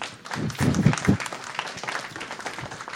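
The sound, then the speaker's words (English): Audience applause for a politician, a dense wash of many hands clapping at once, loudest in the first second and then settling into a steady, slightly thinner patter with no voices over it. “I think, would you all join me and give her a hand?”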